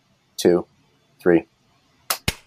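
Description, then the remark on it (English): Two sharp hand claps, made to sync a recording, land a split second apart, loud and crisp, right after a voice counts in short bursts. Near silence fills the gaps. “After 3, we clap.”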